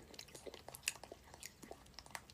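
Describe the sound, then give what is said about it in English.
A woman in a video chews food wetly, with irregular crunchy clicks and smacks, fairly quiet and steady over a couple of seconds, with no one talking. “I know you hate chewing.”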